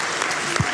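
A crowd applauds in a steady, dense wash of clapping that fills the whole brief moment, fairly loud and close, with no voices standing out.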